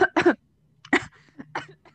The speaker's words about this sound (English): Hello, are you okay? Yo, I'm choking my water.